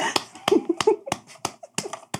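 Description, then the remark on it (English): Sharp hand claps sound at a brisk, fairly steady pace, about seven crisp slaps in two seconds, with a brief murmur of voices between the first few. “Clap for me.”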